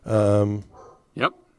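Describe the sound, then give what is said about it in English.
Dogs barking: a drawn-out, tonal bark followed after a short pause by a sharper, rising yip, both fairly loud. “See, the dogs just, I swear to God, we hit record and the fuckers won't shut up.”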